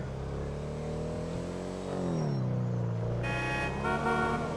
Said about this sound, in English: Don't honk at me, cars.